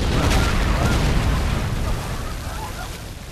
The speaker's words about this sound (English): Okay. And they actually got to blow a real cart up. It says the special effects guys live for days like this.